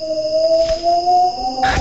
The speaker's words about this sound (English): That's a wolf. That's what a wolf sounds like.